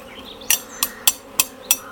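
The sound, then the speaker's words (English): A steady, low droning buzz of honeybees from an open hive during a beekeeper's inspection with frames being lifted, broken by five sharp, evenly spaced clicks or taps over two seconds. No one speaks. “I think we'll put everything back now and let them just get on, but I can see that that's a nice healthy hive.”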